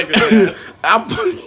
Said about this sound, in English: turning my head left, and taking a big cough. I ain't find shit yet. He said, nope, cough again.